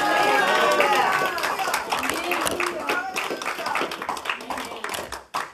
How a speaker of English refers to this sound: God is about to change living water, and if you believe that, give him a good hand clap and a good hallelujah.